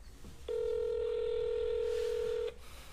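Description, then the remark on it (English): A single steady electronic phone tone, an outgoing call's ringing signal, sounds loud and clear for about two seconds, then cuts off, with only faint background noise around it. “You gotta answer, man.”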